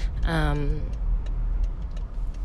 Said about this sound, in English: But anyways, I am in the car headed to pick up my kids.